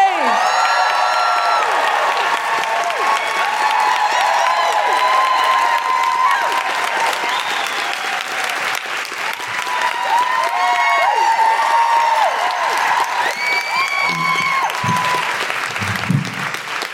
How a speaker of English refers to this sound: So with absolutely no further ado, because no one hates a do more than she does, please put your hands together and make incredible woohooing noises for the wonderful Hannah Gadsby!